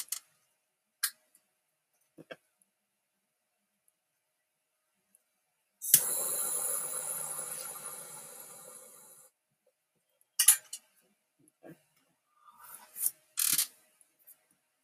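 Several sharp mechanical clicks from a powerful torch lighter being used to light a blunt, scattered, with a loud rushing flame hiss lasting about three seconds in the middle before fading, then a few more clicks. No talking.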